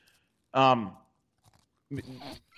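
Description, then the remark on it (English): Crunchy chewing sounds of someone eating a biscuit come in a couple of bursts with a voice sounding briefly alongside. “Do you mind if I eat a cookie while you're?”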